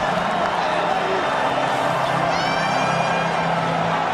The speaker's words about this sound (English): Not a single person in a blue shirt is moved. They're still cheering it while everyone in orange is filing to the exits.